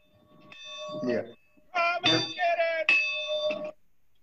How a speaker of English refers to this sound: And if we could, I'm gonna ring the breakfast bell here, and we'll. Can you guys hear this if I do this?